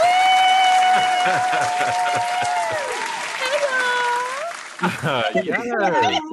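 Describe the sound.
A loud, dense burst of applause with steady clapping, mixed with sustained whoops and cheering voices, ending with excited vocal shouts over the last of the clapping.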